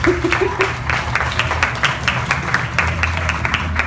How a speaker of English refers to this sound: So one more round of applause for a wonderful one, you guys.